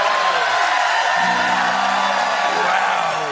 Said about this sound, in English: The applause sign went off, so they all applauded.